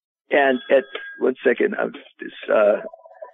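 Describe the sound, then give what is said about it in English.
A telephone rings faintly in the background while a person talks, with a short pulsing electronic ring tone becoming clearer as the speech stops at the end. “This phone keeps ringing here.”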